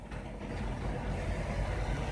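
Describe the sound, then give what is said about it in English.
A deep, steady rumble of a heavy truck rolling by outdoors while lightning flashes, its low engine drone holding at an even, fairly loud level for a couple of seconds, with no voices. “Oh, it's a truck.”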